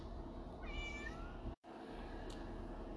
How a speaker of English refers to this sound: I apologize for my kitty meowing in the background. She is in heat, and there's a cat outside, and she's not fixed.